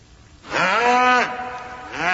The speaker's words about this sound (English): The mooing of a cow or the mooing of a calf. Have you ever heard a cow mooing? What does it sound like? Desperate? Hear this.